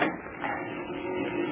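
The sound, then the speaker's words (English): A heavy door is pushed open, scraping and grinding in one steady, rough mechanical drag lasting over a second, with no voices. “I will push the heavy door open and...”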